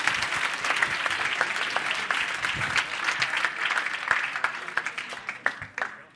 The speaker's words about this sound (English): So, I mean, you can clap for that or something, because that was, like, amazing.